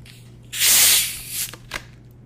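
A single airy, hissing fart blown right at the microphone, about a second long and fairly loud, trailing off into two brief, fainter puffs. No one speaks.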